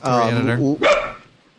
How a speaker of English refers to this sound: The dog agrees with us! Yes, apparently. He's like, Larry, whoop! Very intelligent dog you've got there. Intelligent. We say Larry DiTilio, he reacts.